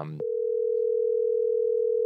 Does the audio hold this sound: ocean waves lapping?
no